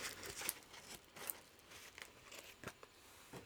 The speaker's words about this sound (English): Oh, there's my parcel. Let me get my trusty scissors. Let's open it up.